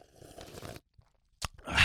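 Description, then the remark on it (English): Noisy slurping sips of hot, strong tea: a longer sip, a brief pause, then a short click and another loud slurp, with no talking. “The tea is just so right. scrumptious so strong today.”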